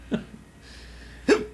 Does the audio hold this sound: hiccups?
yes